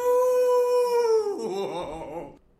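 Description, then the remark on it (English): A person imitates a dog's howl: one long, steady, loud howl held for over a second, then sliding down into a wavering, fading whine, with no other talking. “Woof, woof, woof, ow.”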